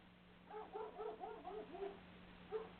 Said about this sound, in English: Oh, just hang on. My dog is barking at somebody. As long as he stays here. Good puppy. People are allowed to walk by. It just doesn't happen often on my country road.